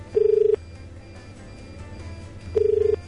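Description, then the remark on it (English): A telephone rings twice through the line, each ring a short buzzing burst separated by a long pause of low background hiss, with no one picking up. “Gee, you'd think they'd be able to pick up the phone, wouldn't you?”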